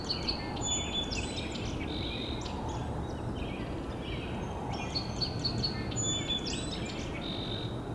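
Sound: song sparrow singing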